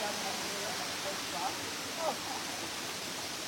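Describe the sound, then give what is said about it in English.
Steady, dense rushing water fills the whole recording, a broad constant roar of crystal clear water pouring from an upper waterfall down into a pool, with faint murmured voices briefly surfacing beneath it. “So the water comes from all over the top waterfall, and then it's going down here.”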